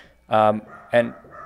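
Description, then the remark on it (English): Two loud dog barks in quick succession, the first longer and the second short and sharp, with quieter background noise between them, as a dog barks at someone who has just arrived. “Somebody's here. And the dog is going nuts.”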